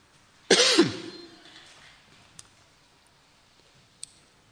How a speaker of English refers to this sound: Could somebody get me a glass of water, do you think? It's a bit of a sore throat, coughing a bit here.